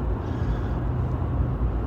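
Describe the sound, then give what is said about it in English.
A steady low rumble of road traffic and the idling or slowly moving engine of a UPS delivery truck, heard from behind the truck, continuous throughout with no voices. “Behind a UPS truck here.”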